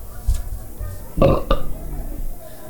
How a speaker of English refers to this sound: Was that a belch?